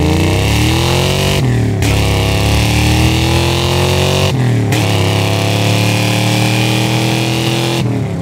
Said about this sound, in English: Then Franco DiMattia in his V8 modified saloon Mustang, he's put a 7-liter engine in it with nitrous oxide in it. It's wild, it's fast.